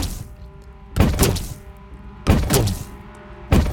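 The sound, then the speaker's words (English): Three heavy, wet-sounding thuds of skipping feet from a figure in a soggy mascot costume land at an uneven, loping pace on a damp floor in a damp pool room, each with a short splashy decay over a low background hum. “and the wet thud of skipping feet coming behind you.”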